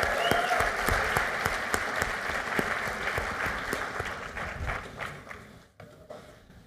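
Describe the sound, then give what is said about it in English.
An audience breaks into a sustained round of applause for the volunteers of a demonstration, dense overlapping claps holding steady for several seconds before thinning out and fading near the end. “Can I get one more big round of applause for everybody who volunteered for this?”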